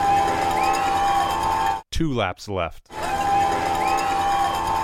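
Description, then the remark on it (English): A crowd cheers loudly and steadily at a world title cycling race as the riders lap the course in the final stretch, a dense roar that continues throughout. A man's voice briefly cuts in midway over the noise. “And with every lap, the crowd explodes.”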